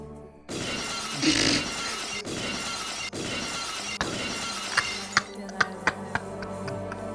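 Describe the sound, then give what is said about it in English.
Glass shatters in a loud crash, then scattered shards keep rattling and settling, ending with several sharp, bright tinkles as pieces drop one by one. “I mean, there's not that many glass breaks that are that, like, glassy.”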